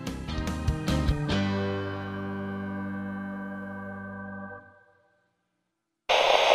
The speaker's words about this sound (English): Channel KRT, cut to static.